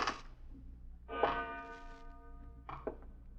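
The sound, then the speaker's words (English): A clock bell strikes three o'clock, each bright metallic clang ringing on with a sustained tone before the next stroke, the chimes spaced unevenly with no voices. “3 o'clock, gentlemen.”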